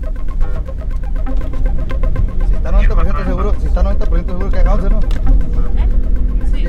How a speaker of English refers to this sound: They turned on a siren and took off, tearing through two lanes of traffic.